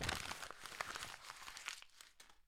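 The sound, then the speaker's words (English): Paper with a written NBA Finals prediction is crumpled and torn, a dense run of crackling, crinkling rustles with sharp little rips that thin out toward the end, no voices present. “Well, I have my prediction right here on my paper, and guess what?”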